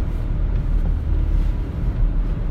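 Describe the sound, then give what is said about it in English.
A steady, low road rumble inside a moving car being driven, with a constant engine and tire drone and no voices. “And by the way, when I'm in the car, I talk kind of slow because I'm trying to concentrate and not plow into someone who wants to cause a vaccident.”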